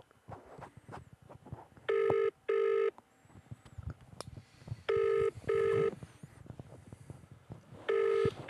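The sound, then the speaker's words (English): A telephone ringing tone repeats in loud, steady double bursts, three cycles in all, over a low murmur of background noise with no one speaking, as a call is placed to a local pub on a match night. “I still think you're following the wrong tact here, ringing local pubs on a match night.”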